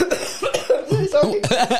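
A fairly loud fit of coughing from a person who has had a cough all week: a rapid run of several hacking coughs in quick succession, with no talking over them.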